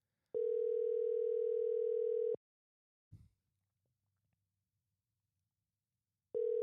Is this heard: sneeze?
no